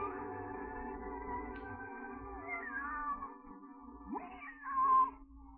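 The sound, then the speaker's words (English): Alice's cat meows in long, drawn-out calls, its pitch sliding up and down, ending in a louder, rising cry, as Alice sits with it under a tree. It sounds clear, with no talking. “Alice, you see, much preferred talking to her cat than learning about history.”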